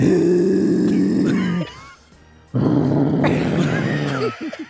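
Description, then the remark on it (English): A person imitates a walrus with two long, loud, guttural growling bellows, separated by a short pause, each rough and low-pitched with a rumbling, burp-like quality. “do the walrus”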